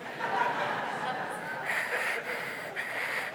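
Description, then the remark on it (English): A person vocally imitates snoring through CPAP masks, a steady, hissing and rasping breath sound with a few snort-like swells, held for a few seconds without words. “Can you imagine the sound of that army of guys snoring, thousands of them, with their CPACs on?”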